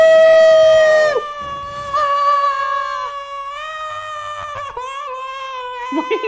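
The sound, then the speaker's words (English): A victory sound effect: a loud, high-pitched excited scream held for several seconds, its pitch wavering and briefly breaking before rising again, with no talking alongside it. “It's screaming out of excitement and hypeness.”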